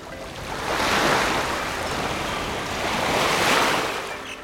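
Stormy ocean surf at the island of Koh Samui, Thailand, roars steadily, with two broad swells of crashing waves rising and falling over a constant wash of hissing water and wind. No one speaks.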